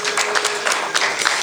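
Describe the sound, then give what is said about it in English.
An audience applauds itself at the end of a show, a dense, steady wash of many hands clapping at once with no single rhythm, holding at an even level throughout and no voices standing out. “Yeah, give yourselves a round of applause, huh?”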